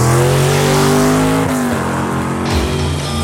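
A race car engine roars loudly, revving and accelerating with its pitch climbing, then shifting down and surging again as it speeds past. No voices are heard.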